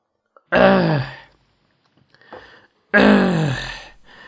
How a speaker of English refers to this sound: You have hot water, but not hot water, I have cold water. I'm gonna sip some right now.